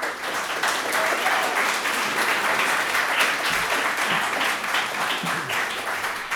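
A crowd at Conway Hall applauds steadily to welcome speaker David Robert Grimes, many hands clapping in a dense, even wash of sound that holds at a consistent loudness for several seconds without a break.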